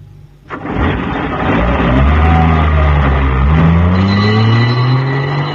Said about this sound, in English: Oh, thank heavens, here's the ambulance.